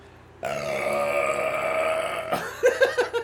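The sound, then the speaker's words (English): A long, loud, croaking burp drawn out for about two seconds, followed right away by a few short bursts of giggling. “I burped again.”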